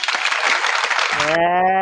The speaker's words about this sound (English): So I'm going to give him a little applause.